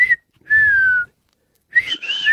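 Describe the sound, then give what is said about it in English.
A person whistles a clear, high sustained note that slides slightly downward, pauses, then returns with a wavering, warbling whistle. Fairly loud, with no talking. “Hypothetically, what was the whistle you were doing?”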